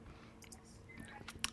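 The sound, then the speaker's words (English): A quiet sip of a 2021 Firestone Walker Autumn Edition Parabola barrel-aged imperial stout: faint wet mouth clicks and a soft slurp, ending with a sharper little smack of the lips, with no talking. “Well, let me take a sip before I open my big stupid mouth.”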